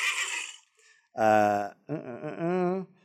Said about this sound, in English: Thankfully, Rocky stops when he hears a neigh that wakes Dusty. He's heard a horse neigh. He listens again. The neigh comes for a second time. Dusty now hears the neigh.